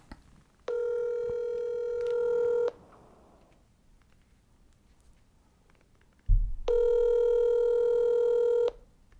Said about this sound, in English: I already want to laugh, and he hasn't even answered. Answer your phone, you son of a bitch.